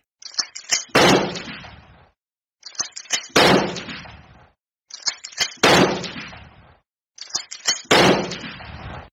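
Four loud shotgun blasts, evenly spaced about two seconds apart, each preceded by sharp mechanical clicks and followed by a booming, fading tail. No voices.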